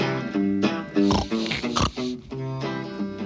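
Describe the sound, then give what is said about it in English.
A human voice imitates a pig oinking, giving a quick run of loud, nasal, harmonic oinks in a steady rhythm. “Oink, oink, oink. Oink, oink.”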